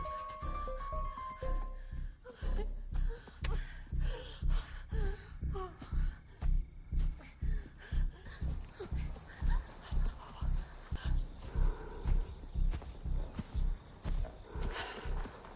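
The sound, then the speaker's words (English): Heavy, rasping breaths of a man mix with steady footsteps that fall in an even rhythm as he chases someone through a park at night in a film, growing denser and more insistent after a few seconds, with a faint tonal hum underneath at the start. “You can hear his breathing and just his footsteps.”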